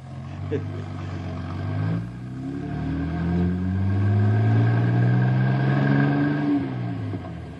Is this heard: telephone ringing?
no